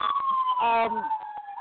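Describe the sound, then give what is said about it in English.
A police car siren wails loudly and steadily in East St. Paul, its tone sagging slightly as it goes by, with a person's voice briefly talking over it partway through. “Is there like a high speed pursuit going on behind you”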